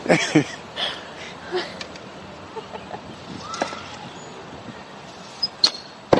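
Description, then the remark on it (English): An arrow shot from a bow by a girl practicing archery in a backyard strikes an archery target with a sharp thwack, followed by a few other brief knocks and soft outdoor background noise, with no one speaking. “Whoa, that hit the target.”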